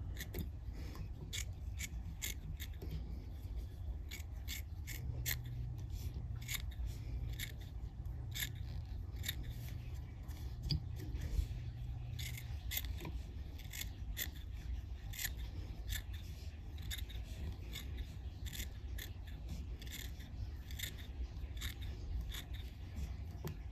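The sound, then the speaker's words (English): Curved scissors snip repeatedly, trimming fly-tying material to shape a tight, tapered fly body in quick, irregular bursts of crisp cuts over a low steady background hum, with no talking. “I like to use curved scissors.”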